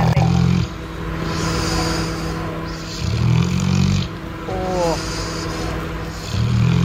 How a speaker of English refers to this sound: Jeez, that's a deep snore too. There's a real strength and intensity.